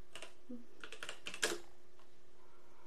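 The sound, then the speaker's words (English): Quick bursts of keystrokes clatter on a computer keyboard as someone types a search query, an irregular run of sharp clicks, ending with a slightly louder tap before a brief quiet pause. “I'm typing an unsolved MY.”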